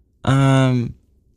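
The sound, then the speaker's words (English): A single loud vocalized yawn, a sustained voiced exhale lasting under a second with a steady tone, then quiet. “Oh, sorry. That's okay. To yawn.”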